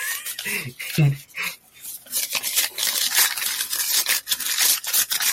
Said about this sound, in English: Yeah, listen to that money. Yeah, just crumpling the bills at this point.